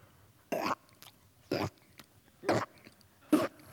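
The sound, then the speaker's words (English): Loud, crunchy chewing of cereal comes in four bursts spaced about a second apart over a quiet background. “What's that noise that I hear coming around the corner? That's my chewing noise.”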